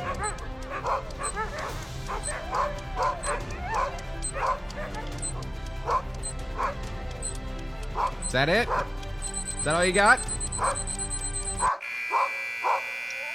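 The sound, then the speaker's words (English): Several dogs bark and yip excitedly in quick, repeated bursts, with a few whimpers, while a person speaks briefly over them; a steady electronic beeping sounds near the end. “All right, we get it, dogs. We get it. You're happy.”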